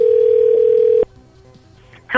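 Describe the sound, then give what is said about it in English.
A single steady telephone ringing tone sounds for about a second over the line of an outgoing call, then cuts off to near silence before a voice briefly begins speaking at the end. “Okay, this has been ringing forever. I've edited out just tons and tons of rings.”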